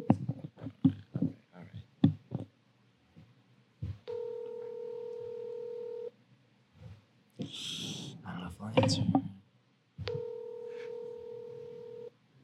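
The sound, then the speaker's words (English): A quick string of phone keypad beeps as someone calls a friend, then a steady electronic ringback tone sounds twice with a long gap between rings. Faint breathing and handling noise fill the pause. “It's ringing.”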